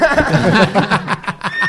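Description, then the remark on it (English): A loud horse whinny with a rapid, fluttering series of shrill pulses that trail off over a couple of seconds, heard on its own with no talking. “Whoa, again, the horse of truth. This horse is a bumpin' tonight.”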